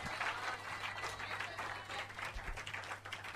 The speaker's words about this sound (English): If I clap here, I've said something that is good. So clap your hands and appreciate the name of the Lord.